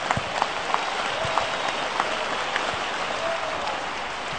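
A crowd applauds steadily, many hands clapping in a dense, continuous patter with a few sharper claps standing out, sustained for several seconds at an even level.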